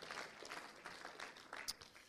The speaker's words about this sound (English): Will you give him a hand clap of praise as you're seated? Hallelujah.